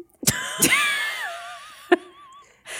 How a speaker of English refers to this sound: He just coughed. Like full projectile, like audible right cough right into the microphone. Like you forgot where you were.